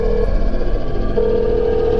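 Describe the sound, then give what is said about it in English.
A telephone being dialed: a short electronic tone, a pause, then a longer steady tone, all over a constant low background hum with no voices. “I'll call now, quickly.”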